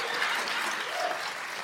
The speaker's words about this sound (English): Imagine if you just never stopped clapping.